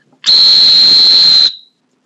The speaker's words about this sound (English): It's better to try to stop the dog in lunging water at the top of his stride with a loud, long-duration whistle that's more likely to be heard by your dog, something like.